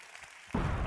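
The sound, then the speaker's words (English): After a brief near-silence, a sudden wall of applause erupts, loud, dense and continuous, filling the second half of the short moment. “Weird applause!”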